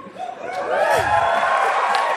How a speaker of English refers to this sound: It's still worthy of an applause.